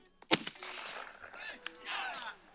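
A single loud, sharp gunshot from a hunting rifle, fired from a tree stand at a big buck deer, cracks out early, then fades into a stretch of rustling and indistinct voices.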